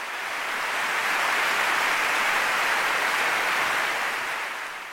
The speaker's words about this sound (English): round of applause for Jimmy Anderson. What a tremendous achievement. 1,000 first-class wickets.